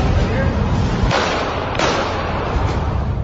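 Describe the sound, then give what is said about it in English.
Two sharp, booming gunshot cracks, about a second apart, from a staged play shown in a video, burst out of the video soundtrack over a dense, steady wash of background noise and muffled voices. “Now, that gunshot you heard, that was from that play.”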